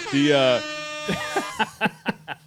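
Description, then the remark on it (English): A loud, brassy horn blast rings out for about half a second, then cuts off as a man starts talking in short, choppy bursts. “Hey, that's air horn worthy anyway.”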